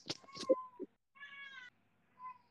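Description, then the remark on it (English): A seven-month-old baby girl being babysat cries in short, high-pitched wailing bursts: a few sharp sobs, then two longer, thinner whines separated by brief pauses, with no talking. “Is one of your 27 kids crying in the background, Chaz?”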